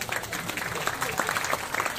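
A round of applause from many hands, a dense, continuous patter of clapping that stays fairly loud and even for the full two seconds.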